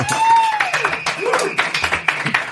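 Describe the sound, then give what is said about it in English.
Canned crowd applause plays on a show as a guest is welcomed, a steady wash of dense clapping, with a few rising and falling whistles and cheers mixed in, at a fairly loud, even level throughout. “Thanks, Renter Crowd.”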